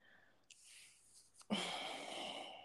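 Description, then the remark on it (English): A person deliberately breathes heavily right into the microphone: a soft, airy intake, then a sudden loud, rushing exhale that continues harshly to the end. No talking. “And what if the person's just breathing and you can hear them breathing intensely?”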